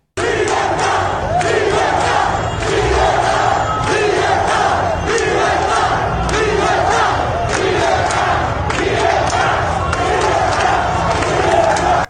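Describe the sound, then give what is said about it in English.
A large street protest crowd chants "freedom" and "liberty" in unison, loud and sustained for the whole stretch, a dense wall of many voices with rhythmic swells and scattered yells rising above the mass. “But we have a clip of crowds in the streets chanting, freedom.”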